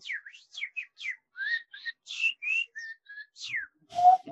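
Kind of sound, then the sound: vocal imitation, whistled imitation of birdsong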